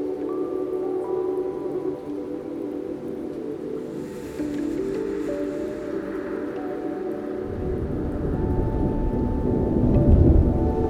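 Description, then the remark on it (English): Steady rain patters and drums rhythmically on a roof during a rainstorm while low thunder rumbles, the rumble swelling louder and deeper toward the end. No voices. “Burst of rain drums rhythmically against the roof, while the thunder gently grumbles again.”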